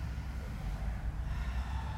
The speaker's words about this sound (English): Unhinge your jaw, separate your teeth. And then just slightly secure your tongue up behind your two front teeth. Inhale through the nose, exhale through the mouth.